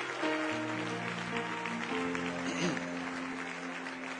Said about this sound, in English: Why don't we give this music team a great round of applause for leading us into the presence of God right now. Come on, really give them a hand clap.